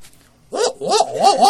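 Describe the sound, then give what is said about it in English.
A human voice imitates a barred owl call: after a short pause, a loud run of wavering, hooting cries that swoop up and down in pitch, with no other talk. “The only bird song that I'm really adept at doing is a barred owl, which is pretty cliche.”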